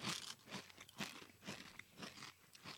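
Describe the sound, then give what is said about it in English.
Crunching and chewing of spicy rolled Takis tortilla chips, with crisp, crackly bites repeating steadily about twice a second, with no talking. “I'll tell you, the crunch is really good.”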